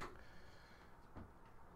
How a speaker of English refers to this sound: of course my cat's going to scratch at the door.